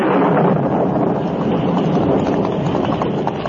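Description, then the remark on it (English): A sudden thunderstorm breaks: a stormy roar of rushing wind fills the whole stretch, loud, dense and steady, with a low rumbling undertone and no voices or distinct pauses. “A short time after the Lone Ranger and Tonto started to help in the search, a sudden thunderstorm broke.”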